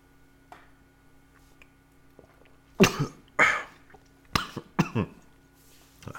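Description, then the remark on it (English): A short quiet pause, then a burst of harsh, sputtering coughs, four or five loud hacking bursts in quick succession, from someone whose gulp of ale went down the wrong pipe. “A little bit of a wrong pipe.”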